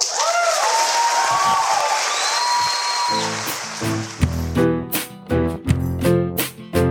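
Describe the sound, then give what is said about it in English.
An audience applauds loudly and steadily after a spoken personal story about a name, with a few whistles rising above the clapping. After about three seconds, music with strong beats begins over the fading applause. “You can hear from the audience response that it resonated, and I hear so much pride in the applause.”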